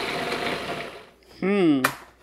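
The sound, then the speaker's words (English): A blender whirs with a dense, steady grinding roar for about a second while making pesto, then cuts out. A wavering voice follows. “Okay, it's turning into pesto.”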